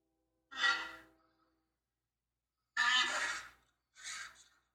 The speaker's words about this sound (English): We found that a rhinoceros makes this sound.